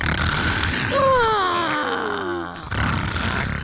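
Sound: loud snoring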